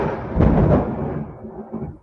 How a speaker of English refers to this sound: What was that? It's raining down here, and it's thunderstorming. Oh, it's thunder?